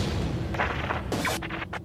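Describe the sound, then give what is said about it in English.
A series of rumbling explosions at sporting events and public gatherings booms one after another, dense and low, with sharp bursts of crackling noise around the middle and end, and no voices. “in the east and 8.05 on the west coast, a series of explosions occurred at a number of sporting events and public gatherings.”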